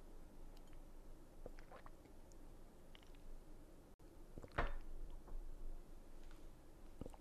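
Quiet drinking: soft wet mouth clicks and a few gulps of water, with a slightly louder swallow midway, all over a faint hiss and no clear talking.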